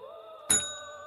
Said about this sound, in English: There's a bell right beside you. Mm-hmm. You get to close the episode by ringing that bell.